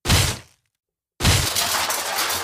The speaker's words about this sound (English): Police, open up! Break down the door.